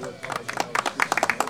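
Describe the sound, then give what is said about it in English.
A brief applause sound effect played from a soundboard, many quick overlapping claps forming a dense, crackling patter that stays fairly steady and moderately loud for about a second and a half. “Applause is the hardest one for me.”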